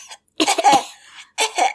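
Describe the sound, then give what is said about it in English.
A man imitates a small, feeble cough in a few quick bursts, fairly loud, with a short pause between a brief first puff and two later clusters. “Yeah, he's doing the funny Zoolander cough. Yeah, like a little weenie cough”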